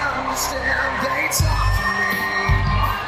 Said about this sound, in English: We were in Randy's hometown, so this went over huge. People were cheering very loudly.